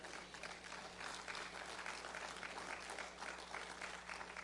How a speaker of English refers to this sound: Boy, you ought to clap to Jesus.